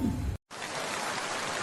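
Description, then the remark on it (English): Steady hiss of rain falling, preceded by a brief lower rumbling burst and a split-second of silence before the even downpour continues without any voices. “It's a rainy Thursday evening, and you curl up in your armchair with a cup of hot chocolate”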